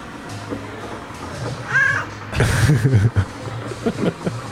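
A cat named Frodo meows insistently to be fed in the morning, a short high chirp followed by a louder, drawn-out, wavering meow, over a steady low background hum.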